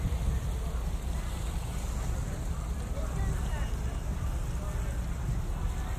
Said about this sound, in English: You see the water coming out? The boat's keeping us right here.